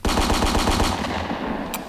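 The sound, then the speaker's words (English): Seven gunshots, given as a rating of 7 out of 10 bullets, fire in a rapid, evenly spaced burst, loud and sharp, followed by a fading rumbling tail and one brief high click near the end. No one speaks. “I'm going to give it a 7 out of 10 bullets.”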